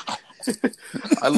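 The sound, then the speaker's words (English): A person imitates a dog's growl with their voice, making a few short, rough, throaty rumbles in quick succession, fairly loud. “There'll be like a dog panting and it's like... Rrr, rrr.”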